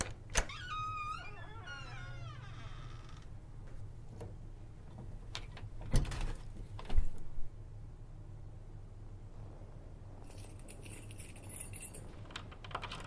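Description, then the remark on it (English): Keys jingle and click against a door lock, with scattered metallic taps and scrapes, then a brighter rattling flurry near the end. Fairly quiet, with no one talking. “We were quiet, the kid and I, and I assumed he was also listening to her keys jingling in the lock.”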